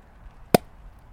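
A single sharp, hollow pop of a cork coming out of a beer bottle, loud and very brief, standing alone against a faint background hum with no talking.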